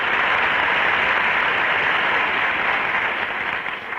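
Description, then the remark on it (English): A dense, steady wash of crowd noise, roaring and cheering loudly for a few seconds without a break, easing off slightly right at the end. “Listen to that crowd roar.”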